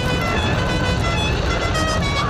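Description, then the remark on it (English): A loud, brassy musical car horn blares a short melody of shifting pitched tones, the tune La Cucaracha, continuous over a rumbling engine and road noise. “car has a particular horn that goes. La cucaracha, the cockroach, if you will.”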